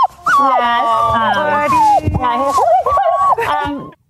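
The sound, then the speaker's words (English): Percy, Dana Perino's new 7-week-old Vizsla puppy picked up in Ohio, whimpers in a run of high, wavering whines that rise and fall almost without pause for about four seconds, with no talking over it. “And that whimpering, by the way, to be clear, was in fact Percy and not any of the members of the 5.”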